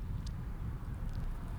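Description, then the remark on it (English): A steady, low rumble of cars moving along a road, heard from a car waiting in a turn lane at a red light, continuous throughout without distinct swells, with a couple of faint high ticks on top and no one talking. “You can hear the cars judging me because they're like, ew, why are you going down there?”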